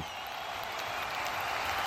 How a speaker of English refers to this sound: So with that being said, let me get him a round of applause with the same effects that he has. Let's go.